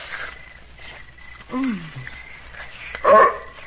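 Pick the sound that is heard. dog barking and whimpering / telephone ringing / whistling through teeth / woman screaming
dog barking and whimpering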